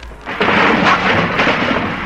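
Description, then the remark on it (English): A loud, sustained sound-effect crash of junk tumbling out of Fibber's closet as he opens the closet door, a dense rumbling clatter that surges in abruptly and keeps crashing for about two seconds, with no voices. “He has gadgets by the score, from a peanut whistle to a cannon's roar.”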